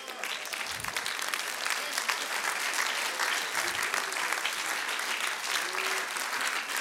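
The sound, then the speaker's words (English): An audience claps for Jesus steadily and loudly, a dense wash of many hands with no pause, a few low thumps underneath and faint voices mixed in. “Clap a little louder.”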